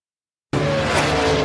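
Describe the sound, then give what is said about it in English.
A loud, sudden burst of race car engines roaring with tires squealing during a three-wide race finish, starting abruptly after half a second of silence and holding steady and dense. “let me give you the sound from the legendary movie Cars”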